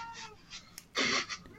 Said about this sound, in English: Shut up, cat.